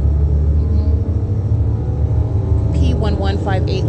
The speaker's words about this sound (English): That's a truck sitting in the intersection with light activity.